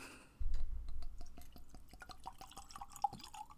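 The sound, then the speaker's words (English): Liquor glugs and splashes into a glass in a quick run of wet, dripping pulses, the tone rising slightly as it fills, after a dull low thud at the start. No one speaks. “It's in my happy little glass.”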